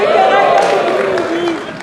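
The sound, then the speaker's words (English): A church audience cheers and claps in a loud, sustained burst at the mention of its churches in Burundi, many voices mingling with scattered applause before it begins to fade. “You're allowed to cheer, by the way.”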